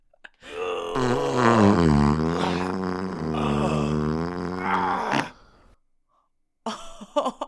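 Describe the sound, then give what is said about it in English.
A long, drawn-out fart with a wavering, tonal buzz and a groan-like quality lasts about five seconds, then stops. After a short silence, a brief burst of sound follows. “You do know this fart, both of you, I guarantee it.”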